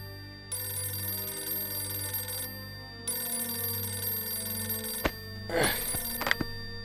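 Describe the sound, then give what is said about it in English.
A telephone bell rings twice at 5:40 a.m. in long, steady bursts with a pause between, followed by a clatter as the receiver is picked up. “But at 5:40 a.m., one phone call changed everything.”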